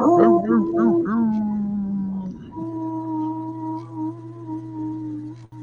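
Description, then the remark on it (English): A voice imitates a dog howling: a few short wavering yelps, then long sustained howls that hold a steady pitch, fairly loud, with no other noise around it. “Woof. There you go. Woof.”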